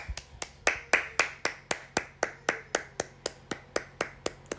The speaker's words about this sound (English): Round of applause, baby. I appreciate it.